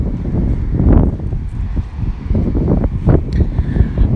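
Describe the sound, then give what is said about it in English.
A steady, low roar of ocean waves washing on a sandy beach with the tide out, heavily mixed with rumbling wind buffeting the microphone. No one speaks, and the sound stays loud and continuous throughout. “hear the ocean.”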